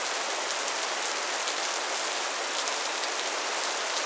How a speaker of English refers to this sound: rain noise.